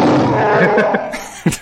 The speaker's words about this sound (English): The Chewbacca roar is awesome.